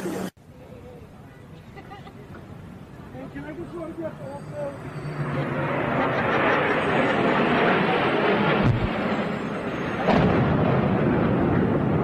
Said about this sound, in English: What the hell was that? It sounded like a plane crash.